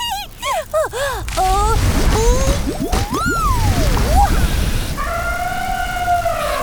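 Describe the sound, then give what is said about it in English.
Cartoon water elephants charge, trumpeting loudly in a chorus of overlapping, swooping calls over a rumbling, busy background, ending in a steadier sustained blare. “are those water elephants?”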